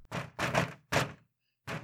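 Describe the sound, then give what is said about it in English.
A cheap, hollow office door bumps and shuts with several broad, rattly thuds in quick succession, fairly loud, with a short silence before one more knock at the end. “At least the door sounds cheap.”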